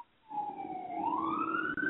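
Emergency vehicle sirens wail steadily outside an apartment in Boston, the pitch sliding down and then rising again, moderately loud with a rumble of traffic beneath.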